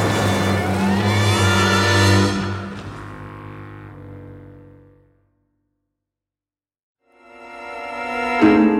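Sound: car braking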